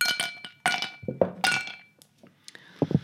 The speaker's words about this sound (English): I'm going to put a couple of ice cubes in there first.